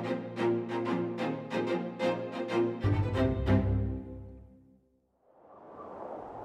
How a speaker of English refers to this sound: The sound of the wind is whooshing throughout your ears as the tumultuous rhythm of breathing and struggle hits everybody at the same time as they are on the back of a giant red dragon from their previous adventure of battle.